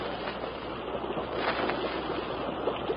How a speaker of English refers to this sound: Sounds like a waterfall somewhere ahead.